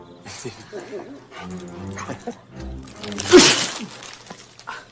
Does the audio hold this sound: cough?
no